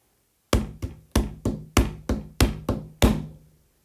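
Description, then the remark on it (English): The hooves of a big billy goat clop across a wooden bridge: about eight heavy, hollow knocks in an uneven trip-trap rhythm, each sharp and resonant with a short ringing decay, with no voices. “Trip-trap, trip-trap, bang, bang, bang, bang, went the hooves of the eldest billy goat Gruff on the wooden bridge.”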